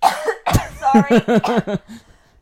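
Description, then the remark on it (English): A loud fit of coughing: one sharp hack followed by a rapid run of five or six throaty, voiced coughs that trail off. “is coughing, and that's what she's been playing.”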